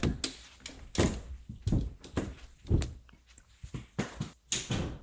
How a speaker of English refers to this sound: The cat jumped out of one of the coats. Out of the coats? Yeah, my wife's coats. The cat was hiding there.